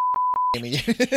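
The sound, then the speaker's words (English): A steady, high-pitched censor bleep holds for about half a second with two quick breaks, then cuts off as someone starts talking. “I'm editing, so I'll beep that out.”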